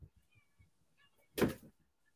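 A door is opened by a cat named Shia trying to get in. There is a short, fairly loud scraping whoosh about midway through, preceded by faint low knocks and rustling in otherwise quiet surroundings.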